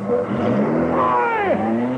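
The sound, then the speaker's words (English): A car with registration number GR5607 speeds off, its engine roaring loudly, the pitch rising and then sweeping downward, with a steady hum of motor noise throughout. “Get the number of that car.”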